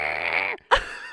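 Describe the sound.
A person's voice imitates E.T., the screaming alien from the movie: a long, strained, wavering wail, a brief break, then a louder sudden shriek that slides and tapers off.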